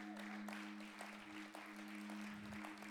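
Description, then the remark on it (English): A crowd claps steadily for about three seconds, a dense, even patter of many hands with a few sharper slaps, over a low steady electrical hum and no talking. “Don't let three people clap. You all got to clap.”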